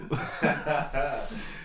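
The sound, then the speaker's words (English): A short fit of spluttering coughs, about four harsh bursts in quick succession, from someone choking a little after a drink went down the wrong way. “Nah, just that went down the wrong way, bro.”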